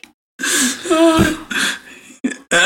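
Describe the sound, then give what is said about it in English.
Someone loudly and exaggeratedly clears their throat in a run of four harsh, raspy bursts separated by short pauses. “You don't clear your throat like that normally, do you?”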